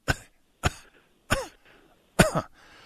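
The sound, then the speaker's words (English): Four sharp, loud coughs in a row, spaced about half a second apart with brief pauses between, the last one longer and rougher. “Lost track of your coughs.”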